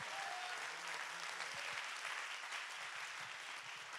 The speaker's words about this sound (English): Oh, I wish that somebody would clap your hands and give God great praise.